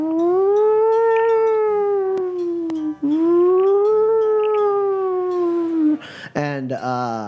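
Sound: voice imitating a siren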